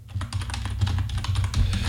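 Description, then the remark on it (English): Rapid typing of searches into Google on a computer keyboard, a dense run of light plastic clicks and clacks, steady and fairly loud over a low background hum, with no voices. “I apologize to everybody listening, and it's just us typing things into Google all episode. Click, clack.”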